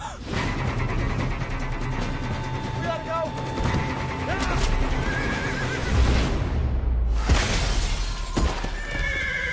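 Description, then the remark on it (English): A white horse whinnies amid a busy outdoor scene, with hooves clopping and faint voices mixed in, followed by a sharp burst near the end and more commotion. “White horse.”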